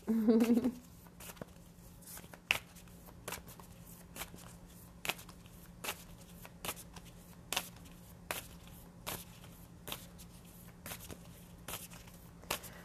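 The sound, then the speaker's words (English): A deck of oracle cards being shuffled, with soft irregular slaps and riffles repeating over a low steady hum; a brief voice sounds at the very start. “With the shuffling taking so long too, this could also be kind of like a message from spirit of with manifesting just in general, be patient.”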